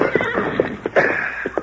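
A horse whinnies loudly, a shrill, quavering neigh lasting under two seconds with a fluttering, pulsing texture, heard on its own without any talking.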